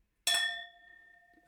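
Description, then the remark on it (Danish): A single bright clink of champagne glasses touching in a toast, ringing out clearly and fading slowly over about a second, with no talking. “Ja, den lyder godt, den her champagne, som man siger.”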